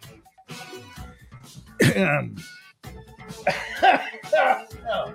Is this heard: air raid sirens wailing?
no